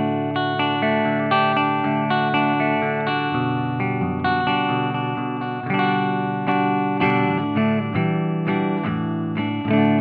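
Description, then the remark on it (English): Electric guitar played without pedals through an amp's clean channel, strumming and letting full chords ring out with a bright, shimmering sustain, steady for the whole stretch with no talking. “So without pedals, is there any way I could hear just the clean and then just the filthy?”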